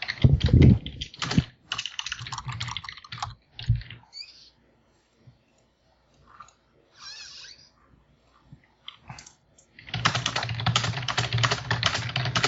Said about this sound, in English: Someone has a noisy keyboard. That is me. Sorry. Okay. Clickety-clack. Clickety-clack. That is probably me.